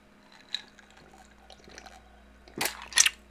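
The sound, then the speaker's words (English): Someone takes a drink: after a quiet stretch with faint small noises, two short wet bursts of sipping and swallowing come near the end, the second one louder. “Let's take a drink and talk about a few of the tight ends.”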